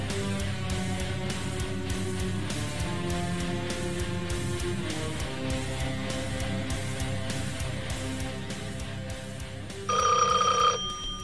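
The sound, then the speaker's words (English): A steady musical bed plays throughout, and near the end a loud, shrill telephone bell rings out sharply for about a second on top of the music. “If you are alone, don't answer the phone.”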